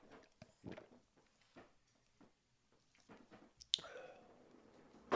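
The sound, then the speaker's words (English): A person takes a drink of water: soft wet gulps and swallows, a sharp click partway through, then a quick exhale and a few faint mouth noises. No talking. “Wait, I'm taking a swig of water.”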